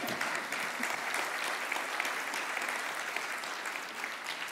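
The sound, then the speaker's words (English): An audience claps steadily throughout, a dense, even wash of many hands with no voices breaking through, holding the same moderate loudness before easing slightly at the end. “Yeah, you can clap.”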